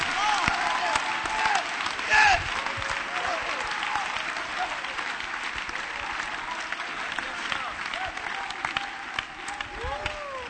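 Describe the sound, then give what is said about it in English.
An audience claps steadily in praise of God, a dense, continuous wash of many hands, with scattered voices calling out faintly beneath the applause. “Clap your hands and give Him praise.”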